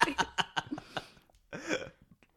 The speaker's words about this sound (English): So, yeah, … burped. Yeah. Disgusting.